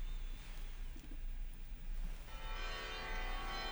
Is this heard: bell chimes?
yes